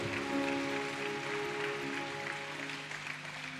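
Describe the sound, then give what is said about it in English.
A church audience claps in a steady, dense patter that holds an even level for nearly four seconds, with a faint sustained tonal hum underneath and no voices. “Come on, you can clap that.”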